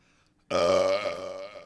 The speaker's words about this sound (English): I'm going to start farting and burp.